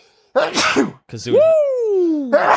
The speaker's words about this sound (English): Oh, I'm about to sneeze, so sorry if it's that.